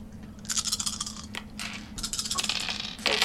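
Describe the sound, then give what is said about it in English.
Dice rattle and clatter across a hard surface in several quick bursts of sharp clicking, fairly loud, with no talking over them. “Six up is a success. One dice dropped.”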